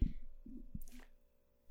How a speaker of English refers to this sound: Clap sync. Yeah. I did a clap. Did you clap? I did, actually. That's annoying. Now you can sync my audio with my voice.